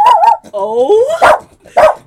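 A dog barks close by in short, sharp bursts mixed with whiny, rising yelps, about four or five vocalizations in quick succession.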